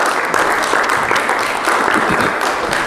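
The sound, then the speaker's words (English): A crowd claps together in sustained applause for the team that takes care of the kids every week, a dense, steady wash of many hands with no pause, loud and continuous through the whole moment. “Let's give Heather and her team a round of applause for taking care of our kids every week.”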